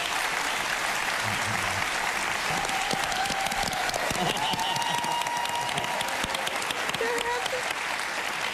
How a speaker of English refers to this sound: I'm gonna stand up and clap for myself.